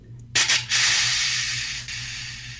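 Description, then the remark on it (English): A person imitates a buck deer's snort-wheeze: a few quick, forceful breathy snorts followed by a long, loud, airy hiss of exhaled breath, otherwise quiet. “The snort wheeze that John O'Dell referred to earlier is more like this.”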